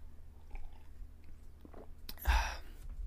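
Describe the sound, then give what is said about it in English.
Someone drinks water: soft, wet mouth sounds and small sips, then one louder gulping swallow near the end. There is no talking. “Let me pause to take a water break.”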